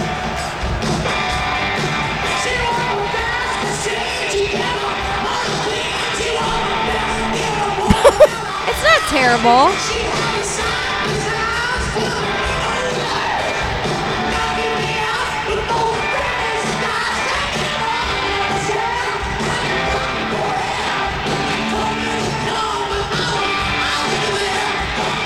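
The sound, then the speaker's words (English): Dense, steady crowd noise fills a poorly recorded live performance, a constant wash of many voices with a few sharp bangs and shouts bursting out briefly partway through. “Wow, the crowd. You can just hear the crowd.”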